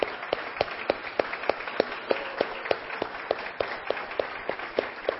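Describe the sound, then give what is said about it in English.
An audience applauds steadily for the mothers present, who have been asked to stand on Mother's Day, many hands clapping in a dense, crackling wash with sharper individual claps popping out at a brisk, fairly even rhythm for several seconds, with no voices over it. “We would love to honor you, cheer for you.”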